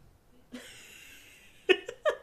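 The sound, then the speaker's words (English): A long, raspy snore drawn in over about a second, followed by a few short, sharp snorting puffs, with no talking. “Is that all snoring?”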